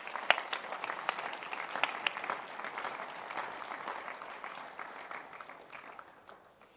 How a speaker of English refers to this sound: Clap your hands.